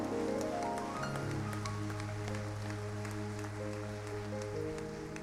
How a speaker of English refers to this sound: If you believe that, I believe that that deserves a hand clap as well.